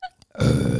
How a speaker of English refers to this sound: Now you got to burp after.